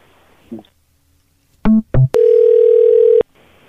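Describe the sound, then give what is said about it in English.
Two short electronic beeps, then a steady, loud telephone dial tone after a call is hung up, holding for about a second before cutting off abruptly, with faint background noise and no talking. “I noticed you hung up on me, but that doesn't exempt you from the city ordinance.”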